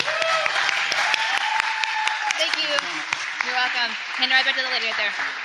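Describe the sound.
An audience applauds a guest steadily for several seconds, a dense patter of clapping with voices calling out and talking over it throughout.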